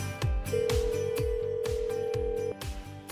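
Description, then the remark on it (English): A single long ringback tone of an outgoing phone call to a woman, a steady hum lasting about two seconds, over a thumping rhythmic beat that runs through the whole clip. “We're going to call her up, get her on the phone, and our goal is to get you guys together again.”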